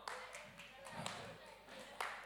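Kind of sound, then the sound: human body sound, hand clapping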